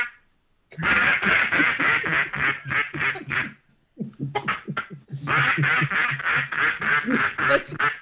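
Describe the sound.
A person imitates a duck, letting out rapid, loud quacks in two long bursts separated by a brief pause, with no other talking.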